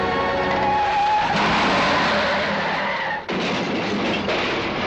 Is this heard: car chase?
yes